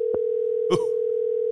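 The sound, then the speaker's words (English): A steady, unbroken phone dial tone hums at a single mid pitch for the whole moment as a call is placed through Siri, interrupted only by a soft click early on and a brief rustling burst midway. “No, Siri can't dial and talk.”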